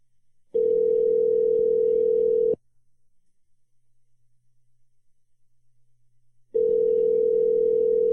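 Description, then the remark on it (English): An outgoing phone call's ringback tone as another person is being added to a call: a steady electronic buzz rings for about two seconds, goes quiet for four, then starts a second ring. The tone is clear, with no talking. “It's ringing.”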